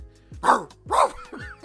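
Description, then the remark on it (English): Two loud, harsh dog-like barks about half a second apart, followed by a couple of shorter, quieter yelps, with no talking. “You bark on your records.”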